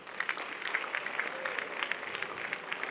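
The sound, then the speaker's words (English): An audience applauds for Ghana with dense, steady clapping that holds an even level across the whole stretch, a bright crackle of many hands with no voices standing out. “Clap for Ghana.”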